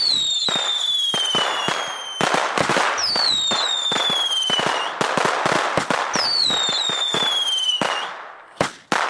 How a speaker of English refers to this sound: The … were shooting fireworks inside. According to Dennis McNally's account, many of the rooms opened up onto the hotel's central atrium, and fireworks began to shoot across it, sending Secret Service agents ducking.